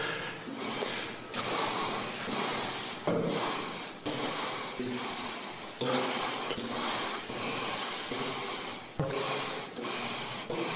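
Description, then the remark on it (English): Loud nasal sniffs from a man giving a speech repeat over and over in uneven bursts, each a sharp breathy intake through the nose, with short gaps between them and no speech. “Sniffing like a motherfucker.”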